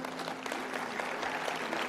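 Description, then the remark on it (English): Steady applause from an audience, a dense wash of many hands clapping at an even, sustained level throughout with no voices standing out. “Now, I can tell by the applause that most of y'all here are saved, right?”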